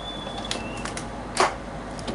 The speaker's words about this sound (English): There we go. Had to lock my goddamn door.